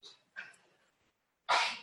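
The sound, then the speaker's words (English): A sneeze rings out from somewhere in a crowd: a breathy intake and short bursts, then a sharp, bright, loud explosive burst near the end. “Bless you.”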